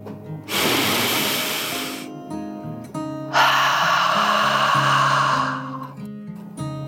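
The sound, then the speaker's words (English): Two long, deep breaths, one drawn in for about a second and a half, then a longer, rushing exhale, both loud and airy over a soft low musical hum. “Dragon took another deep dragon breath, in and out.”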